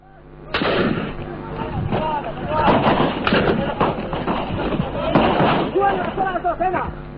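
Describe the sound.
Sustained gunfire and heavy bursts crack and boom continuously, loud and dense, with shouting voices and commands mixed in, an archival field recording of combat as troops advance further into a city.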